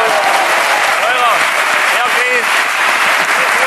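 Steady applause from a crowd, a dense continuous clatter of clapping at constant loudness throughout, with a few brief whoops and cheers rising over it.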